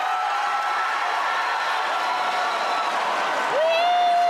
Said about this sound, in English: Fucking cheering.